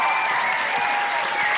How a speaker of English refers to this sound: Big round of applause